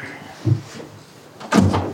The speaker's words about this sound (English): Let me open this door for you.